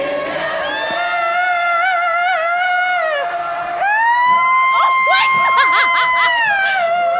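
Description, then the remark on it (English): A loud, high-pitched falsetto scream held in two long, wavering notes, the second sliding upward, over a noisy crowd at Red Rocks, with a voice briefly exclaiming near the end. “Getting that falsetto.”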